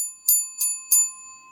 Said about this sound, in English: Oh, wait. Can you hear the bell?